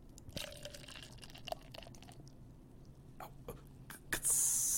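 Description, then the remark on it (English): Quiet clicks and small crackles as a can is handled, then a canned drink suddenly pours into a cup with a loud, bright fizzing hiss at the very end. “So I have a cup and I have this can.”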